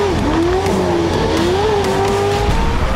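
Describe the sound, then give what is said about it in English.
Loud off-road racing engines with Borla exhausts at the Lucas Off-Road Series rev high and hold a steady, whining pitch that wavers slightly, with a dense rumbling roar underneath and no voices. “They're revving so high.”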